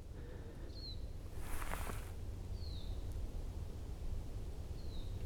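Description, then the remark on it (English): A siskin, a type of finch, calls up in the treetops of a boggy woodland with beech trees and conifers, with the sun out: three thin, high, downward-slurred calls spaced a couple of seconds apart, faint over a steady low rumble, with a brief rustle partway through. “Now there's a bird calling up in the treetops.”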